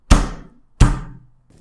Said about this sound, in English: Was that a mysterious rap on the door?